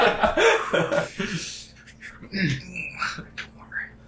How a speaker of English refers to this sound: I start coughing. Oh, jeez.